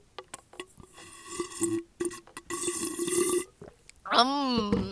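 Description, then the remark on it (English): Drinking of water, with several wet gulps and swallows in quick succession, followed by a loud, drawn-out burp at the end. “You guys want ASMR? Hear me drink water?”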